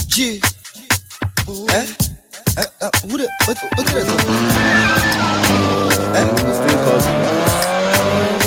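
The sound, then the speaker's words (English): A car engine revs in short bursts, then tires squeal loudly as the vehicle accelerates away, the screeching and engine roar sustained until the end. “You don't solve every problem with driving off with your car”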